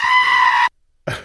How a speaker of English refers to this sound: this is a goat.